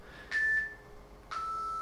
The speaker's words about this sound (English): So that's my app on my iPad called Seconds. It's beeping to tell me that I've been going for 20 minutes. Of my Pomodoro.